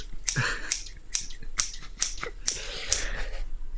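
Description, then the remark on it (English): Scissors snip, a steady run of about nine crisp, bright cuts spaced roughly half a second apart, with no talking. “Fixing some scissors to cut.”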